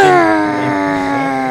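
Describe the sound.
A person imitates a wounded dinosaur, one that just got stabbed, with one long, loud, wavering howl, a slightly falling tone held steady for well over a second, alone with no talking over it.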